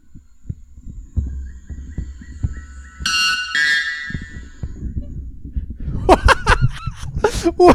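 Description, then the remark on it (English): A white bellbird, a Brazilian bird, lets out a single deafening screaming call of 125 decibels, a harsh, metallic two-part blast that rings briefly over low thumping background noise, followed by excited voices. “That is the white bellbird, the Brazilian banshee bird. That's 125 decibels.”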